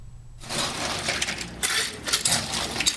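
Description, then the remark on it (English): At a hand-shaken drink shop, a store employee scoops a big ladleful of ice cubes, a dense burst of rattling, clinking chunks that crunch and shift continuously for a few seconds, with brighter clattering surges, no voices. “A store employee scoops up a big ladleful of ice cubes.”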